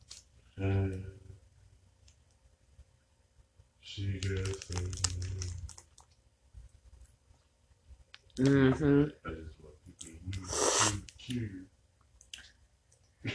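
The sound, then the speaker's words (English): Quiet taps and clicks on a phone screen mixed with short bursts of bright electronic slot-game tones, coming in four separate flurries with near-silent gaps between them. “As I sip my Maxwell House International Vanilla Caramel Latte with my Hostess coffee cake and play a slot machine on my phone and do a podcast at the same damn time.”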